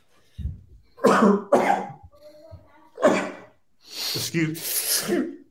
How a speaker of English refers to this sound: Excuse me. There you go. Wow. That's my last sneeze. I usually sneeze in threes. That's one of the things. When I do sneeze, I sneeze in threes.